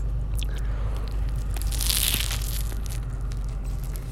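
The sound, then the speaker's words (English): A crisp bite crunches into a Whopper burger, followed by a few seconds of wet chewing and munching with no one talking. “Then you're gonna stick your top on back on the Whopper, and then take a crunch.”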